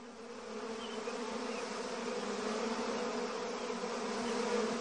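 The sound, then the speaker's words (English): A dense swarm of bees buzzes continuously over sugar, a steady droning hum with layered tones that grows slightly louder toward the end, filling the whole scene. “Get off my sugar! Bad bees! Bad!”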